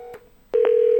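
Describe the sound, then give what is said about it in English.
Telephone line tones: a faint steady tone with a click, a short pause, then a louder sustained beep interrupted by a brief burst, like dialing before the ring. No voices. “We're going to see if he picks up on the actual phone.”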